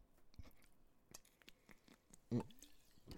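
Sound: sipping water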